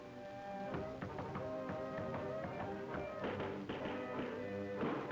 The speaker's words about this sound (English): while I nodded, nearly napping, suddenly there came a tapping, as of someone gently rapping, rapping at my chamber door. It's some visitor, I muttered, tapping at my chamber door.